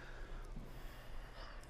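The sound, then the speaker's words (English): A soft, steady ujjayi breath drawn through the nose during a downward dog yoga pose, with a faint oceanic hiss, quiet, with no talking. “Generate ujjayi breathing in through your nose and out through your nose.”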